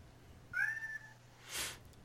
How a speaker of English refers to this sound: Cameo appearance by Brittany's cat. Nala, who's Beyonce, or might be Beyonce. Oh, your cat is named Nala? That's awesome.